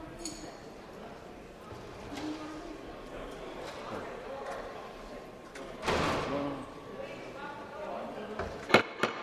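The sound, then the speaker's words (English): Heavy chamber doors slam shut one after another, with a loud thud followed by a couple of sharp bangs near the end, over a low murmur of voices. “And you could hear the doors like boom, boom, boom, boom, boom, all the doors shutting.”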